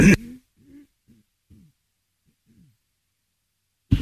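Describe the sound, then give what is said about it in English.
A sharp, breathy throat clearing opens, followed by several short, low, voiced throat-clearing grunts spaced out over a few seconds, fairly quiet, with no talking. “I have to keep clearing my throat.”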